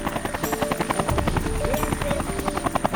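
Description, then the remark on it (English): A helicopter's rotor blades chop in a rapid, steady rhythm over a high turbine whine, loud as it passes overhead, with no voices. “You fly helicopters in, usually two, unless it's something really big, and then it's 4 to 6.”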